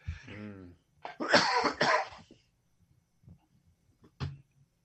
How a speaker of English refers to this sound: Sorry about that. Coughing attack.